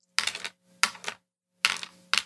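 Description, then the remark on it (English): Five dice clatter and tumble across a hard surface in four quick bursts of rattling, with brief pauses between them and no voices. “I'm going to roll 5 dice here.”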